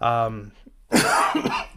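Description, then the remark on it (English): A short voiced sound, a brief pause, then a loud cough bursts out with a harsh, raspy tail lasting nearly a second. “sorry for the cough.”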